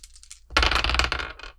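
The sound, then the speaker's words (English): Dice clatter and tumble across a hard surface in a quick burst of rattling clicks, preceded by a few faint light taps. They are rolled during a game and land on doubles. No one is talking. “Okay, I failed, but I rolled doubles.”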